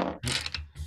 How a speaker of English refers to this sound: As you can hear in the background, we've got our dice.